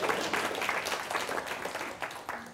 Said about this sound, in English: Fill that dead air with applause, I'll take it, okay.